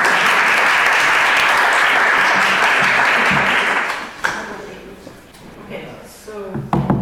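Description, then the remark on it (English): An audience claps steadily in a dense, loud burst of applause for about four seconds, welcoming a particle physicist to a lecture at Oxford. It then thins out and dies away, and a single voice begins speaking. “So, if you please give her a round of applause.”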